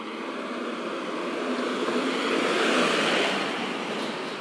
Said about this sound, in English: hold on, a truck coming.